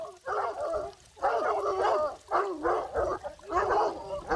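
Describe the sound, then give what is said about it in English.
Several dogs bark and bay in four loud bursts, each lasting most of a second with brief pauses between, their overlapping yelps rising and falling in pitch. “Stupid dogs, get back.”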